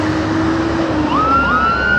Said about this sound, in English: Oh yeah, and there's sirens here too. Like, where are they even going? Like, what is that?